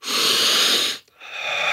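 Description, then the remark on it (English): A long, deep inhale drawn in with a slight wheezy hiss, a brief pause, then a steady, airy exhale. Fairly loud, with no talking. “How many of you have taken a deep breath lately?”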